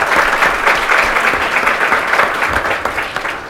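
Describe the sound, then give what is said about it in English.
An audience applauds the panelists before a panel discussion on fixing NAFTA, a dense wash of clapping that holds at a fairly even, loud level for a few seconds with no one speaking over it. “A big round of applause for our panelists before we get started.”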